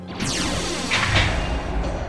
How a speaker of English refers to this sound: The heavy, thick blast doors slam shut, followed by a second door, then a third. There's a hissing sound as the huge door seals shut.